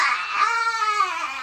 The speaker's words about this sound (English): Listen to the noise. The baby is crying.